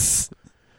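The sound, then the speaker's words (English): A person makes a loud snake-like hiss, a sharp sustained 'sss' lasting about a quarter second, followed by a couple of faint soft mouth sounds and near silence. “Snake. Slithering serpent.”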